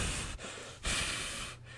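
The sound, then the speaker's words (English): A six-year-old female dog, hair standing up on the back of her neck, huffs and breathes heavily in agitation while walking through the house: a few forceful, noisy breaths separated by brief pauses, with no one talking. “Yeah, and she's breathing. You hear her all huffing, all mad.”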